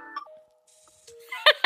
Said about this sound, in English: That was my tile notification. My keys are... What is it doing? It's this thing that my wife got me so I never lose my keys.